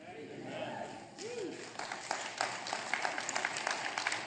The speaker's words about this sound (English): Twelve of you, golf clap, right? Come on.